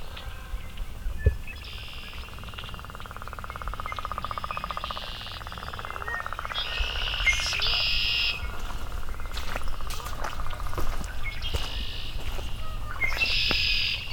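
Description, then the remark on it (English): Tree swallows give repeated bursts of high, bright chirping twitters that come and go in short clusters over a steady low background rumble, during the first bit of near-sun after a rainy morning. “Oh, some tree swallows.”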